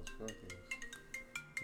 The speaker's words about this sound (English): My phone's ringing.